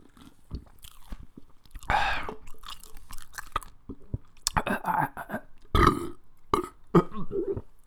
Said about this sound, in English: it's popcorn. I just love the crunchy feeling. I'm gonna put like 6 popcorns in my mouth and gonna eat them all together with the mac.